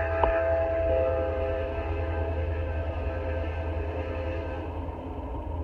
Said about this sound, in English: Hey, the train's going by. So I'll let the train go by. You can see the train. You can see the lake.